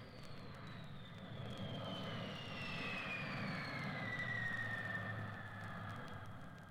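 A jet plane engine roars steadily, a broad low rumble with a high whine that slowly drops in pitch as the aircraft passes, sustained and fairly loud with no voices.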